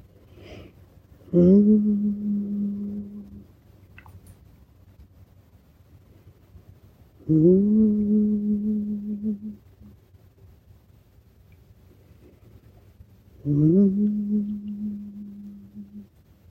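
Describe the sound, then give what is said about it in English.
Three steady, low-pitched hums, each lasting about two seconds and starting with a slight upward swoop, separated by pauses of faint background noise. “Maybe it helps to hum.”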